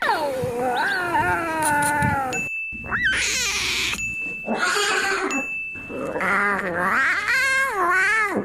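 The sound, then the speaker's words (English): High, strained cub cries and squeaky attempts at roaring, several in a row with short pauses, fairly loud, sounding more like wavering mews than true roars. “4 out of 5 roaring Smolden cubs.”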